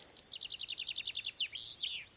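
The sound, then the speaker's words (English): Birdsong outdoors: a rapid series of high, evenly spaced chirps followed by a few sweeping whistled notes, clear against a quiet background. “The bird song.”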